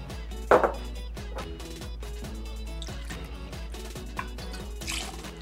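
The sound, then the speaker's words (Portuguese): Gin is poured into a glass for an alcoholic cocktail in a short trickling splash, with soft clinks and drips, over a steady low background of music. “A nossa base alcoólica vai ser o gin. Pro drink alcoólico.”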